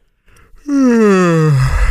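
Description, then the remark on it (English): A man yawns once, loud: a short breathy intake that opens into a long, drawn-out voiced groan sliding steadily downward in pitch before trailing off. “He yawned again.”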